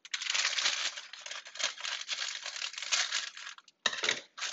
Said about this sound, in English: Open the bag. Oh, goodness, gravy. Not open. Let's get some scissors.